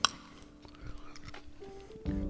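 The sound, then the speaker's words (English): Blue raspberry hard candy being crunched between teeth, a few crisp, crackly bites scattered across a couple of seconds, with soft breathy mouth sounds and a brief murmur of voice near the end. “I'm sorry for all the crunching, guys.”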